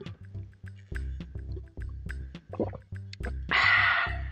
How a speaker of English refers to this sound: That's me drinking water. That's the sound of water sliding down my throat.